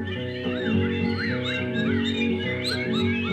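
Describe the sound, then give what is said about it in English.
A voice imitates a bird's warbling call in a song, with quick rising and falling chirpy whistles over a steady low musical backing, moderately loud for a few seconds. “And the bird went.”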